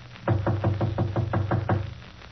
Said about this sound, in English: If he's home, why doesn't he answer? I'll knock again.